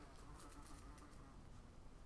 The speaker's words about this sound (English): Speaking of flies on the wall, there's a fly that's buzzing around my office at the minute that you might hear at some point.